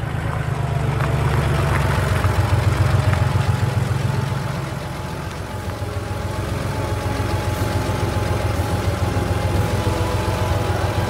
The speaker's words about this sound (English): The Free World Gang's car pulled up.